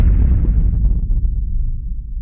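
A single loud explosion with a sharp start that fades into a deep, sustained rumble, its crackling highs dying away over about two seconds. No voices are heard.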